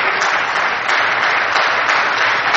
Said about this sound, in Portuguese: pode aplaudir se você quiser, pode aplaudir se você quiser.